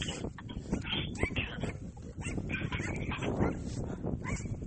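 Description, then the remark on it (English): A small dog yaps over and over in quick, shrill bursts, barking almost nonstop for several seconds with no one talking. “Stupid tiny dog, go away.”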